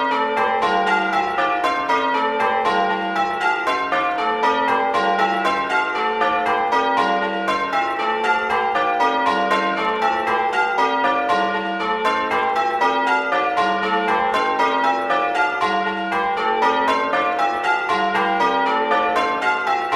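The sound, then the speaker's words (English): A peal of Norwich Coslaney St Michael's church bells, heard as Able Simulator output from recordings of the bells, rings continuously, strikes overlapping in a steady cascading rhythm, with a dull, thuddy tone and no voices present. “Firstly, the Norwich Coslaney St Michael's bells, the Thuddy bells.”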